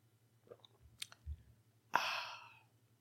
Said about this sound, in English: For those listening on the audio version, I'm going to take a quick sip of coffee and a hydration break as I let you process that statement.